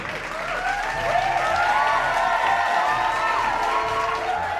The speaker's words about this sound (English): Lord Blackthorn, a panicked look on his one-eyed face, starts to speak over the uproarious cheering, but he's cut off by Gunlit.